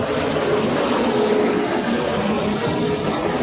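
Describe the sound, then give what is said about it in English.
A train rumbles by, a loud, steady roar of low mechanical rumble and hissing noise that holds level for the whole few seconds, with no voices. “There comes a train.”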